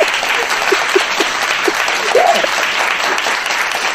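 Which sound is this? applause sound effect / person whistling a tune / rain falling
applause sound effect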